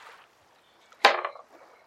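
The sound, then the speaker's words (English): Dice rolled on a table for a perception check in a tabletop role-playing game, landing a natural 20: a faint tick, then one sharp clatter that rattles briefly for a fraction of a second before settling. No one speaks during the roll. “Roll me a perception”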